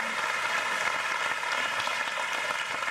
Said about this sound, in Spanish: Gloria a ellos, y con eso quisiéramos aplaudirlos.